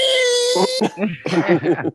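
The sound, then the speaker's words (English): A voice imitates an AM radio tuned between stations, mimicking a weird noise from a movie heard when characters drive in a car: a steady, buzzy whine over a hiss, which breaks into choppy, warbling, garbled bursts like a distorted broadcast fading in and out. “Look, you guys aren't old enough, but that's what AM radio used to sound like in between stations.”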